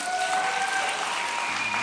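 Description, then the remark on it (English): A crowd applauds steadily as it cheers a man on, a dense wash of clapping that holds at an even level throughout, with a few faint cheers or whistles mixed into the noise. “Can we cheer him on a little bit? Help him out a little bit.”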